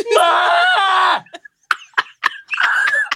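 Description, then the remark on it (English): A person lets out a strained, sustained scream away from the microphone, lasting about a second, followed by a few short choppy vocal bursts and a brief wavering cry at the end. “Just going to do a little scream off mic.”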